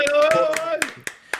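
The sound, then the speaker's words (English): About six sharp hand claps from the hosts of the Tuesday Catch-Up, welcoming a former host, land at a steady, moderate pace, loud and crisp, while a sustained voice-like tone drones underneath during the first half. “Let's clap him in, boys.”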